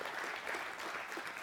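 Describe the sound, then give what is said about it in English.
A church audience claps together as a clap offering of praise to God, a dense, steady burst of applause, many hands overlapping into a continuous crisp patter at an even loudness throughout. “Give him a clap offering of praise.”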